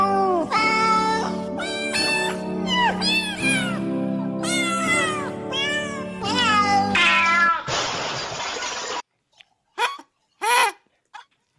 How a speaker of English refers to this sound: Those aren't even real cats. That's just a lot of electronic noises.